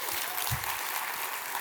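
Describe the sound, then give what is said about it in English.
An audience bursts into a steady round of applause for a 95-year-old grandmother, dense hissy clapping that holds an even loudness throughout, with no talking underneath. “Give my grandma a round of applause.”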